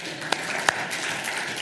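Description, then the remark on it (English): A church audience in San Ramon applauds news that seven home churches met weekly. The clapping is a steady, dense wash, with a couple of sharper, louder claps standing out near the start. No one speaks over it. “We can cheer for that one too.”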